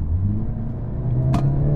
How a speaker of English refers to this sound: it's only a 2-liter engine, it's got a fat turbo